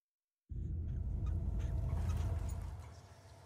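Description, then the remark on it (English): After a brief silence, a loud bird call bursts in from a film trailer being played: a harsh, throaty, fowl-like gobbling that carries for a couple of seconds before tapering off, with no one speaking. “There's a bird and a guy walking in.”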